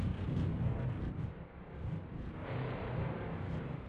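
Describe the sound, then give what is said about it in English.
Distant thunder from an approaching storm, a deep continuous rumble that rolls on for several seconds, easing briefly midway before swelling again. No voices. “A storm approaches in the distance.”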